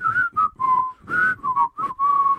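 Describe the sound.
Men whistle a bouncy cartoon theme tune in short phrases, clear, the melody dipping and sliding between notes with brief gaps, no talking over it.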